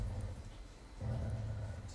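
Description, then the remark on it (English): Dogs growl playfully while playing with each other in a low, continuous rumble, easing briefly before swelling again. The growling is soft, with no one talking over it. “They're just growling and playing with each other.”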